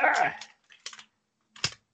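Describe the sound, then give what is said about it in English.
Sharp, hard clicking of the claw tips of a razor-fingered glove tapping together, a busy clatter first and then two shorter bursts of taps, fairly crisp. “And then just randomly start clicking your claws during the episode.”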